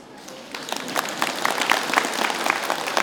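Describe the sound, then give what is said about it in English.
A crowd breaks into steady applause for audience members who say they have recovered from being sick, many hands clapping in a dense, crackling patter that swells after a quiet start and holds at a moderate level. “If they say good, then clap for them.”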